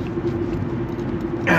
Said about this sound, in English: I'm in the car, I'm heading home. It's authentic, right? Nothing doctored up.